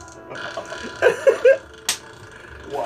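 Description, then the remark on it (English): A fart rips out in a few short, buzzy, sputtering bursts in quick succession, followed by a sharp click against a low background hum. “Which is even more impressive because the butt vibrations is what makes the sound.”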